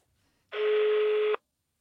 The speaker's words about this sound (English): Well, that sounded a lot like a foreign ringtone to me, but the call ended on one ring.